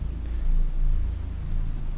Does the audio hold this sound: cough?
no